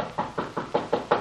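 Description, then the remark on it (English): Six quick, evenly spaced knocks rap firmly on a wooden door in a steady rhythm with no voices: guards carrying a captive knock on the door of Thorson's study. “The guards carrying him have just knocked on the door.”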